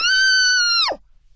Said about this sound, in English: just checked that I was okay screaming in the booth